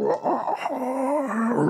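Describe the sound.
A person imitates a monster's howl with their voice, an ugly-sounding alligator: one loud, sustained cry with a gravelly edge, wavering and then sliding slowly downward for nearly two seconds.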